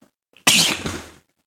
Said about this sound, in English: I'm going to sneeze. I feel a sneeze coming.